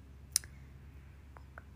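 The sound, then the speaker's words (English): A few short, crisp clicks and rustles as a sheet of handwritten notes is pulled out and handled, fairly quiet, with irregular gaps between them and no one talking. “I'm gonna get my paper out, hold on.”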